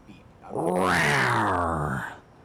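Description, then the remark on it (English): A person's voice imitates a big cat's growl, a single drawn-out roaring "rawr" that rises and falls over about a second and a half, loud, made while picking the Detroit Lions to win a game. “Rawr. Give me the Lions. Yes, sir. I was like, which cat is that?”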